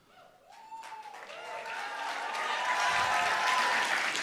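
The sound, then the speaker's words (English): An audience bursts into applause mixed with cheers and whoops, starting modestly and swelling steadily louder over several seconds into a dense, sustained wash of clapping and shouting. “They didn't cheer as much for you.”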